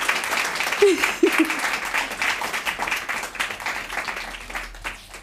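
Audience applause: a dense, steady wash of many hands clapping for about five seconds, with a couple of brief voice-like cries or whoops near the start, fading slightly at the end.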